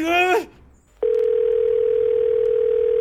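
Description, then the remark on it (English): A brief burst of voice cuts off, then after a short pause a steady, loud single-pitch telephone dial tone drones on unbroken for about two seconds, as if the line just went dead. “Don't hang up on me.”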